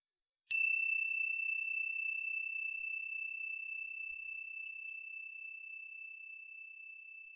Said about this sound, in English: But we can do that through first connecting to the present moment, through the sound of the bell, and you're able to notice the present moment moving through time.